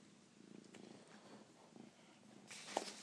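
cat purring

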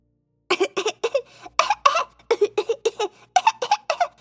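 coughing

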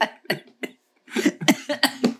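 coughing

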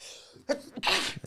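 sneeze

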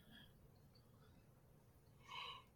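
yawn

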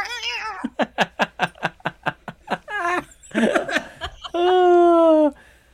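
cat meowing

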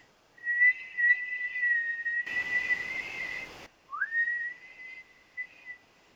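whistling

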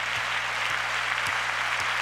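audience clapping hands

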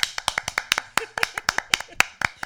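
hands clapping

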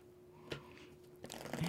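shuffling tarot cards

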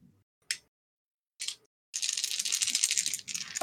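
many dice being rolled

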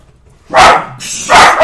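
puppy barking

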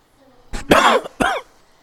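cough

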